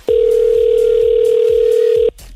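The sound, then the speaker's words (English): A phone ringback tone sounds once as a radio station calls a listener who signed up on its website: a steady, loud electronic purr lasting about two seconds, with a soft thumping beat in the background and no talking. “All you got to do right now is pick up the phone when we call. All right, let's make the call.”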